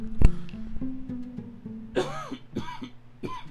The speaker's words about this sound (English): There's that allergy cough that's been plaguing me.